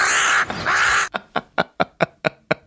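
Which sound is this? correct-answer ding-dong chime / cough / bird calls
bird calls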